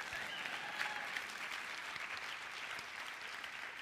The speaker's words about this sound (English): hang on, you get to clap in a second.